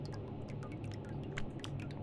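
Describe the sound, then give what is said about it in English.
Water drips steadily from a roof leak, fed by runoff from the houses above, into an overflowing bucket, a quick irregular patter of small splashes over a low background hum, fairly quiet and with no one speaking. “There was a constant dripping noise, a leak in the roof”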